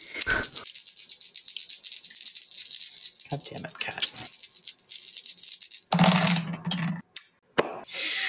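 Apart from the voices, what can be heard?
dice rolling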